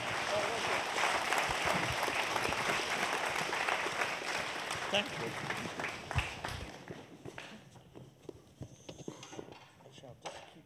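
Audience applause, a dense steady clatter of many hands clapping that holds strong for about six seconds, then thins out into scattered, fading claps.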